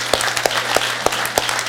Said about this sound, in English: I'm going to clap with you, brother. I'm going to clap with you.